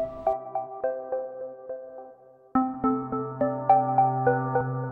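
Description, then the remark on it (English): A phone's electronic startup chime plays twice in quick succession as a small robotic arm switches the phone on and off to test it at a factory in Ukraine: a bright melodic jingle of ringing tones that fades and then starts again louder, with no talking. “There's a little arm that's switching a phone on and off to test it.”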